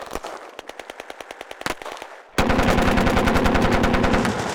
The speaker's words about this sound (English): All right, watch out. Oh, there's people. Gunfire.